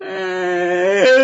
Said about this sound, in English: A Chewbacca one. That was everything a Chewbacca yawn.